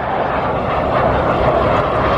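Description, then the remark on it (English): A loud, steady roar of aircraft engines fills the whole clip, a broad droning rumble with a slight propeller buzz as planes fly past at an air show. “Look at these things, how they're just flying by. Isn't that cool?”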